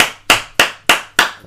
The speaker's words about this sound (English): Just gonna clap at everything.